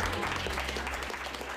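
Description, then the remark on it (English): A crowd at a speaker event breaks into steady applause for all of the speakers, dense overlapping clapping that stays loud and even throughout, with a low hum running underneath. “Can I give another round of applause to all of the speakers?”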